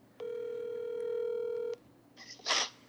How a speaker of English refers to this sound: All right, here we go. We're going to call him in. See. It's ringing. There you go, right there. You hear it?